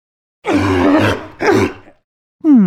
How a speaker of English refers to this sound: So, what's that sound? A sea lion! A sea lion. Sea lions aren't much like lions. They're more like ocean dogs. Sea lions are really playful, and their babies are even called pups.